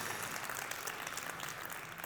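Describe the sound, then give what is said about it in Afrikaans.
A crowd claps and cheers steadily to welcome first-time guests, a dense wash of many hands applauding at a constant level throughout, with no single voice standing out. “Ek wil net vinnig sê, toe ons gaste verwelkom het, ouens wat vir die eerste keer is, daar was die powerste hande klap ooit, kan ons net ons gaste, ons ouens wat vir die eerste keer keier by ons, kan ons hulle lekker cheer, julle is so welkom hierso.”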